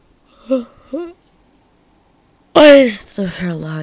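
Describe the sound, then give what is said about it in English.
A person who has just woken up lets out a loud, drawn-out vocal yawn after a pause, preceded by two short, soft rising vocal sounds. “But I like to give you guys the raw materials, you know, like yawning, dog barkings.”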